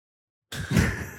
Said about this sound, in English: And Fullerton is next. Doors open on the left at Fullerton.